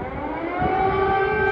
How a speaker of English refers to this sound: Air raid sirens sounding across the capital.